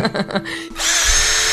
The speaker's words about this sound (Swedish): Jag var ju lite freak på maskiner, det är jag fortfarande. Som borrmaskinen.